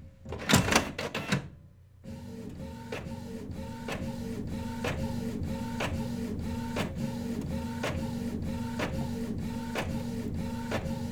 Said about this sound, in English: That's the sound of my long dormant inkjet printer coming to life in the background.